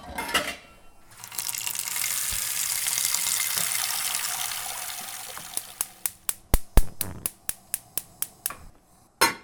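Water pours steadily from a tap into a metal pot, filling it to boil for pasta, a broad rushing hiss that swells and fades, followed by a series of sharp clinks and knocks of the pot being handled.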